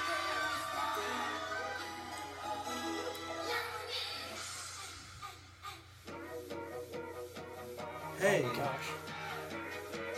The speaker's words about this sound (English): Well, the crowd liked it. They're cheering.